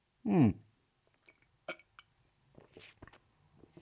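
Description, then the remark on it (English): A loud gulp with a short voiced sound at the start as someone sips and swallows the last of a bottle of Lucozade, a sugary drink, then a sharp click and a few quieter wet sipping and mouth noises trailing off. “Though I'll try to be a bit more positive, though that might turn out to be a little difficult as I am currently sipping the last of my sickness Lucozade.”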